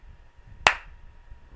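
A single sharp hand clap, made as a sync marker for later editing, cracks out once, loud and crisp with a quick ringing decay, against an otherwise quiet background with only a faint low hum.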